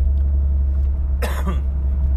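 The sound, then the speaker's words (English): A single sharp, loud cough breaks out partway through, over a steady low engine-like rumble that hums throughout. “I really do apologize about the cuffs. I just, there's no way for me to edit them out.”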